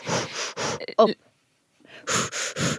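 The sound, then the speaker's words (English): A voice imitates the heavy, gasping breaths of someone going down into a cold plunge pool: three loud, rapid huffs, a short vocal catch, a pause of silence, then three more forceful breaths in quick succession, breathy. “You're going down into the pool, you're breathing real heavily and then jump back up and then you go down again.”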